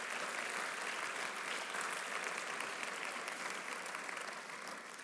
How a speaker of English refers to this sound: And while you're offering up applause,